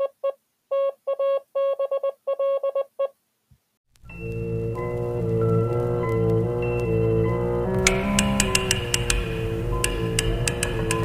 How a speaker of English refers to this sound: It is 3 a.m. at the Gotham First National Bank, and the clicking noises you hear are the tumblers of a lock, magnified many times by intricate amplification equipment.